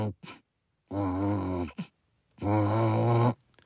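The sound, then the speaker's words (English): A voice imitates a noise a car makes while stopped at a red light, like a stuck CD changer although the car has no CD player, coming from the AC: a couple of short clicks, then two long, droning, groan-like hums with steady pitch, each lasting under a second and separated by a brief pause. “my car's making a weird noise where, like, it looks like there's a CD changer in my car”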